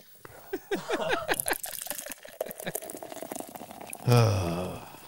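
People talk briefly, then near the end a double lemon drop drink is poured into a glass, a loud splashing stream lasting about a second with a rising, filling tone.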